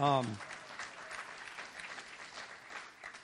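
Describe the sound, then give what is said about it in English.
An audience at a church breaks into steady, dense applause lasting about three seconds, many hands clapping at an even level, with a brief voice at the very start. “Yeah, I should get a clap for that.”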